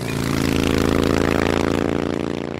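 A Harley-Davidson motorcycle engine idles loud, a steady low rumble with a thick, throbbing pulse that holds even for a few seconds, with no voices.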